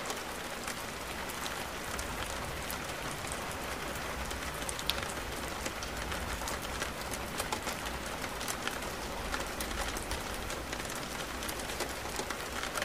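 Steady rain falls without a break, a dense hiss of countless drops pattering on a surface, with small irregular taps standing out at an even, moderate level throughout.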